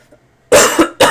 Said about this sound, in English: Unedited, unfiltered, you get all the coughs, you get all the chair creaks, you get all the heavy breathing.